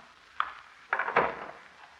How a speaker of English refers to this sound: Casey, she's unlocked three different locks to open that door. Yeah, one of her eccentricities, I guess.